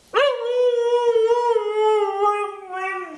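A single dog lets out one long howl lasting about three seconds, its pitch bending slightly so it sounds almost like a drawn-out "mama"; no one speaks.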